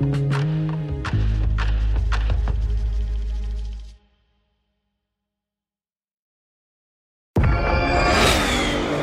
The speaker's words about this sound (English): Did you hear that? That's what an estimated 500 horsepower sounds like.